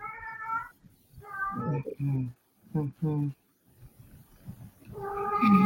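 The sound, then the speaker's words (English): A male cat yowls loudly and repeatedly in the background, drawn-out wavering cries with a few shorter lower vocal bursts between them and a final rising howl at the end. “We hear your kitty purring in the background. No, he's yelling.”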